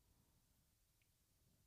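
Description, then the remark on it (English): Near-silence with faint low rumble, then a phone keypad tone on a voicemail line cuts in abruptly at the very end: a single loud, sharp electronic beep, cut off almost as soon as it starts. “Leave a callback number. Press 5.”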